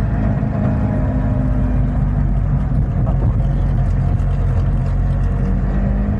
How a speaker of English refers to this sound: Yeah, right, we're off. We're moving now. Just negotiating a speed hump as we come out the car park here at a massive 10 miles an hour.